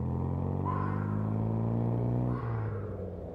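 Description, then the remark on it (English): A car engine revs hard as the car is driven on bumpy ground along an uneven grass and dirt track, a loud, steady growling drone that holds for a couple of seconds before its pitch drops and the roar eases off slightly. “And as they struggled to ride the uneven grass and dirt track, although there was one witness, Reginald Turney of Staines Crescent, who was sleeping in an Anderson shelter and was awoken by the car's engine revving hard as it was driven on bumpy”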